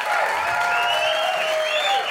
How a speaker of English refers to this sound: Round of applause to ….